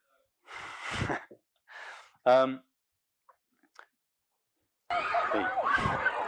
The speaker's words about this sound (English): And actually, just on the other side, to the right behind the trees, is actually a playground. So some of that screaming is from the playground, but I would say there was actually an equal amount of sort of screaming and play going on just in this